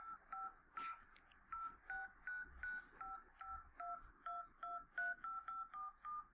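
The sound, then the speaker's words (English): A rapid series of telephone keypad tones, each short beep a two-pitched touch-tone, dialed in quick regular succession about fifteen times to place a call, clear with faint background noise and no talking. “Do you want me to dial right now?”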